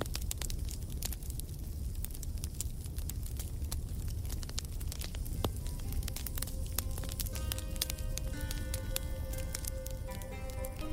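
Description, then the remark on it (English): A bonfire crackles steadily, with dense sharp pops and snaps over a constant low roar of flames, fairly loud throughout, with no talking. “And then ponder to myself before I put out the flames and amble back into shelter.”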